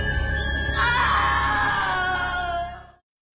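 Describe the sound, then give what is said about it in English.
A voice lets out an exaggerated, theatrical scream, rising sharply after a brief low murmur and holding loud for about two seconds before cutting off into silence. “We need a meme gif of her just screaming, no!”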